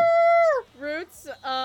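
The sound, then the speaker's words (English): Dogs howl: one long, high, steady howl that slides downward, followed by a few shorter, wavering yelps and whines in quick succession. “I thought you said your dogs are going to be quiet today.”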